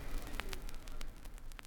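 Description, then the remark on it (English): Hissing, crackly static with a steady noisy wash and a few sharp, bright pops scattered through it, fairly quiet and continuous with no voices. “I'm hearing static.”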